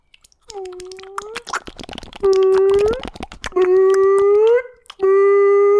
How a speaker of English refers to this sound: You know those fire alarms? Yeah. It sounded like it. Can you do that sound that the bottle makes again?